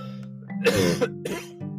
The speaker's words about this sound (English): Got a bit of a cough there. I do apologise.